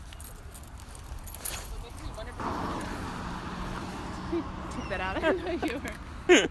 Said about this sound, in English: All right, the bus is here.